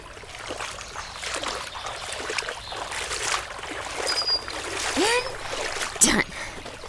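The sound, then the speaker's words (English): Steady rushing and trickling creek water fills the scene, with occasional splashes as someone crosses the creek, and a few brief bird-like chirps rise above the flow. “Okay, it's time to cross the creek, and hopefully not fall in.”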